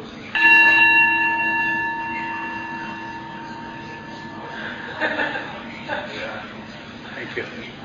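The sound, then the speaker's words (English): A single bell is struck once as the signal to switch roles in a question exercise, ringing out clearly and then sustaining a long, slowly fading tone; soft murmurs and light laughter from people follow as the ring dies away. “I'll ring the bell, and that'll be the signal to switch.”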